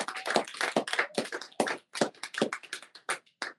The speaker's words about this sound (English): Give him an applause.